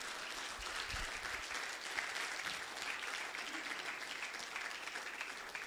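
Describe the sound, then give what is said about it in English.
A crowd claps for Jesus, steadily, a dense, continuous patter of many hands at even loudness for several seconds with no voices standing out. “Clap for Jesus.”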